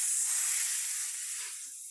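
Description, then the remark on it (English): A voice imitates a cat scratching with one sustained, breathy hiss lasting about two seconds, fairly loud, fading slightly toward the end. No words are spoken. “Scratches. Columbus Cat skill scratches.”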